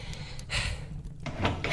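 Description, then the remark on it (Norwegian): A door in a home is opened at night in a drama about Charles Darwin, with two soft, breathy whooshing surges over a low rumble, one around the middle and a longer one toward the end, with no voices. “Ok, jeg får gå opp den døren.”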